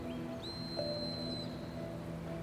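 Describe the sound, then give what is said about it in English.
A faint, high-pitched whistle sounds one sustained note for about a second, preceded by a brief softer chirp, over a low steady background hum. A hiker on a trail about 800 to 1,000 yards from Bob's Creek Ranch is blowing it to signal an emergency. No one speaks. “Then he blows on his whistle, three consecutive blasts to signal an emergency.”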